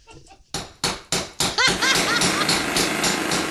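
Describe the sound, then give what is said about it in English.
A jackhammer starts with four loud, evenly spaced bursts, then breaks into continuous harsh pounding, with faint squealing tones riding over the racket. “A jackhammer.”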